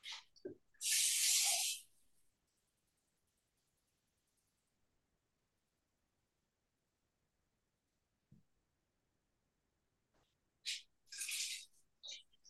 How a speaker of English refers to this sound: So since we're going to be doing 8 cups of that, it's basically I'm just going to add 8 cups of water to the Instant Pot, and then it's 1 teaspoon per cup of the bouillon.